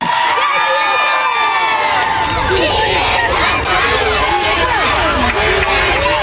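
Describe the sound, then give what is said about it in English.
A large group of elementary school children cheers, shouts and chants a boy's name together at a rally, a loud, continuous wall of excited high-pitched voices with overlapping yells, energetic throughout. “the kids were super excited to see Diego and cheer him on with homemade signs and chants of his name”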